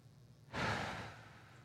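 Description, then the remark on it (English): A single long, breathy exhale begins abruptly and slowly fades over about a second, fairly soft, with no talking. “And I exhale all the way.”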